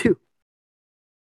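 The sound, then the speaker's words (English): A man sneezes once, a single short, sharp, loud sneeze lasting only a moment before silence follows. No one speaks. “Yeah, I don't mind him sneezing in the background.”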